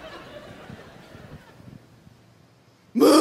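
Soft, muffled chuckling gives way to a sudden, very loud, high-pitched woman's scream, a demonstration of her own scream, that bursts in at the very end and is abruptly cut off.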